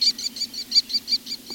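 An American Kestrel gives a quick, evenly spaced series of shrill, high klee notes, about nine in a row, clear over a faint low hum.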